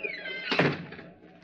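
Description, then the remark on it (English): The door of a ship captain's cabin swings with a short creak and then shuts with one solid thud, the sound fading quickly. No one speaks. “Shut the door behind you.”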